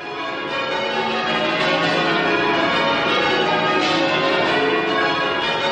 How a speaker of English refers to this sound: And to accompany this slideshow, the bells of Great St. Mary next to us sung out a specially written bell-ringing tune thing.